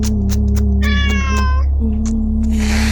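cat meowing

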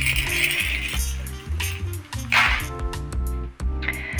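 keys jingling

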